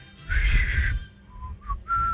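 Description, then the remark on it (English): A person whistles the first three notes of a tune, a few distinct notes in sequence, clear, with no talking. “I just did the first three notes of another one.”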